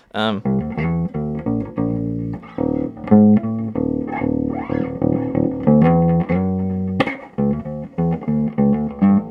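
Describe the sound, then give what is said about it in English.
An electric bass guitar, a 20-fret Legend bass tuned to drop D, plays a run of plucked notes in a low register, with a thin, slightly buzzy tone and steady, riff-like rhythm, a few sustained low notes and bends between quicker phrases. “Some drop D as well. Very thin tone, but fuck it, we'll just roll with it.”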